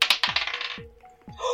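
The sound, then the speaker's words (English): Dice clatter across a hard tabletop as they are rolled for a sleight of hand check, a quick run of sharp clicks and bounces that settle, then a few more rattling taps at the end. Fairly loud, with no voices. “But now you can go ahead and roll sleight of hand to try and dislodge his keys from his pockets.”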